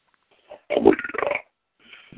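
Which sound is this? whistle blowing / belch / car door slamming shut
belch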